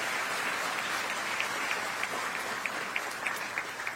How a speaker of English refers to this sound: And an excellent example of that is our Milwaukee Fire Department. Yes, you can cheer for the fire department. They're great.